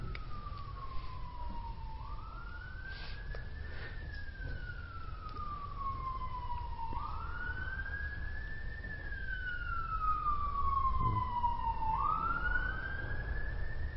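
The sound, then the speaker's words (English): A wailing emergency siren sweeps slowly up and down in long repeated cycles, rising in intensity as it approaches outside, with low traffic rumble underneath and no one speaking. “Funny, I just came back from Europe a week ago and I just realized how different the sirens are there.”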